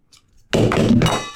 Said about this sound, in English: Don't be throwing stuff. Quit playing with water bottles. Everybody quit fidgeting with shit.